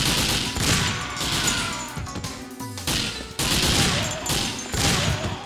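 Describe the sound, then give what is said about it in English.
Heavy .50 caliber gunfire from a video game roars in dense, rapid bursts, loud and continuous apart from a short break midway, with no voices over it. “I do love my 50 cals.”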